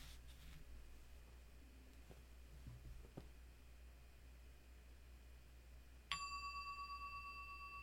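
A small meditation bell is struck once after a few soft handling noises, its clear bright tone ringing out and sustaining with a gentle pulsing shimmer as it slowly fades.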